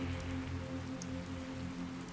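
Steady rain patters on a hard surface, a dense continuous hiss of drops with a low hum beneath, even in loudness throughout.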